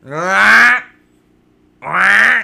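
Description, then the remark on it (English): A duck named Anitra quacks twice, each call loud, nasal and drawn out, separated by a short silent pause, with nothing else in the background. “You heard Anitra the Duck?”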